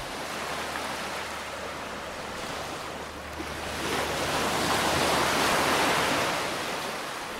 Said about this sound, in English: The sound of summer. Those waves are rolling onto a beach in Benidorm, a town on Spain's Mediterranean coast. From June to August, year after year, there's barely a free inch of sand to be found on this beach.